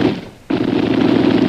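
Rapid gunfire rattles loudly. A brief, softer lull is cut off by a sudden burst that continues as a dense, steady stream of sharp shots until the end.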